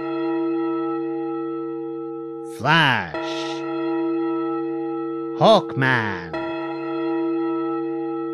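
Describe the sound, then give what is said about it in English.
A deep, resonant clock bell rings with a long sustained hum that hangs through the whole stretch, while a voice speaks two short words over it. “And as the clock starts to chime, she says, With each bell tolled, these names I say of those who'll die by end of day.”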